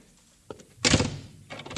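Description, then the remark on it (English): A front door swings shut with a solid, fairly loud thud, preceded by a light click of the handle and followed by a softer rattle of the latch, with no one speaking. “I want to shut the front door, that's all.”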